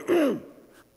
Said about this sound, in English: Excuse me, I got to cough again.